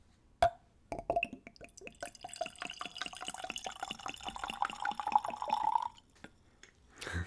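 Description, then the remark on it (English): Whiskey is poured into a clean, tulip-shaped Glencairn nosing glass: a quick clink, then about five seconds of steady glugging whose pitch rises as the glass fills, with no one talking. “So now the pour.”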